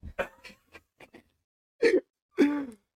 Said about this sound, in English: She's fine. She just has a cough. Understandable.